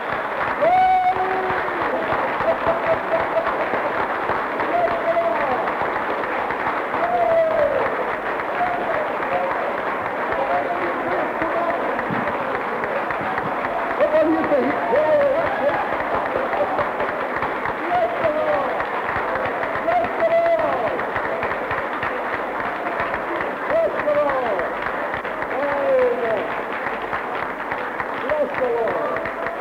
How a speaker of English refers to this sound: Shall we all give Jesus a hearty clap? Come on.